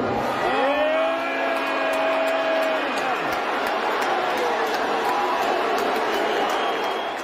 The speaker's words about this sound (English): I'm just going to think of like thousands and thousands of people booing Elon. Make some noise for the richest man in the world.